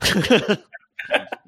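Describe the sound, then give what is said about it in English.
A short throat-clearing cough by an actor in a film: a rough burst, a brief pause, then a second smaller rasping clear. No one speaks. “And just like that little cough that he gives, like to kind of clear his own throat, is just so amazing.”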